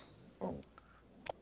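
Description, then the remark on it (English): The speaker's pet dog gives a couple of muffled barks, one fuller bark followed a moment later by a shorter, sharper one, heard faintly with no talking. “Shut up. Who are you talking to, Raven? My dog.”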